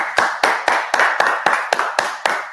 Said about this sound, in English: And it's this man right here, you're looking at him. Round of applause for the big man.